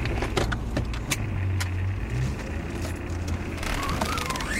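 People climbing into a car: sharp clicks and clunks of doors and handles, a brief jingle of keys, then a low steady rumble settles in with a few soft shuffles.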